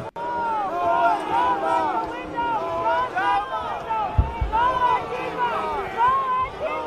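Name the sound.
crowd shouting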